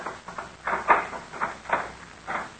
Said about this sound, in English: Now we will see. Open the door, Fang. Yes, Master.